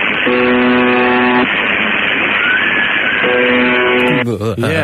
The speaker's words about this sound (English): So that's the noise. Sounds like a foghorn. 24 hours a day, forever, since the 1970s. It's never stopped. It's never stopped.